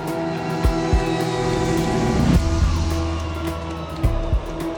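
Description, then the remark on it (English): A Boeing 737 MAX prototype jet airliner, rolled out of Boeing's Renton factory, prepares for its very first takeoff on its maiden flight; its engines roar steadily, a dense, loud drone layered with sustained whining tones and a few dull low thumps, with no voices. “And let's just take a listen as this airplane gets ready for its very first takeoff.”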